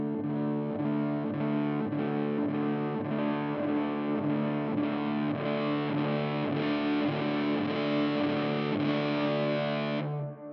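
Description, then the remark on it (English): A distorted electric guitar, played through a distortion pedal placed at the beginning of the signal chain with the dirt brought in slowly, plays steady, rhythmic sustained chords for about ten seconds, the gritty drive thick and even throughout before the sound cuts off sharply; no one speaks. “Put this at the beginning of your chain, and like your attack is just gone. If I do this. Yeah. Slowly bring in some dirt.”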